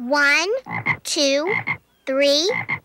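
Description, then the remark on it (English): Frogs croak three times in a steady pattern, each a loud, drawn-out rising call followed by two quick clipped croaks, clear with no talking. “5 bunny frogs.”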